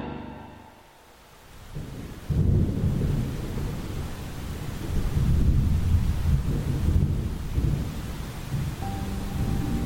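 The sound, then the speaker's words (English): Steady rain pours down with a constant hiss, while deep rolling thunder rumbles underneath and swells midway through. No one speaks. “So there I was, standing under an awning, in the rain, with old Professor Florsham.”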